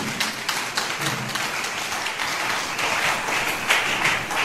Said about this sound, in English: Give the Lord a clap.